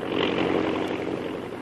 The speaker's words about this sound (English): as the plane speeds along to its first stop when the co-pilot comes back to the cabin.